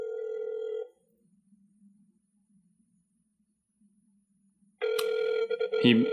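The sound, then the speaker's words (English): An outgoing call's ringback tone: a steady electronic ring, a long silent pause of about four seconds, then a second ring with some extra noise and chatter on top. “Ringing.”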